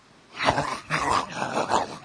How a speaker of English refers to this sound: But when we would buy a bone for our dog, he would chew and eat it for weeks. Around 3 weeks. And every time he would chew on the bone and eat the bone, you would hear a growl.